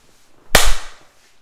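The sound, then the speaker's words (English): One loud, sharp hand clap standing in for a gunshot: a sudden crisp crack with a short fading tail, alone against quiet background, no talking. “I can just clap my hands for this one.”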